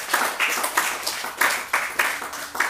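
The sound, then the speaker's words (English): A church audience claps hands together in a steady, rhythmic beat in praise of Jesus after a sermon, the many overlapping claps forming loud, sharp bursts with no talking. “Clap your hands unto Jesus.”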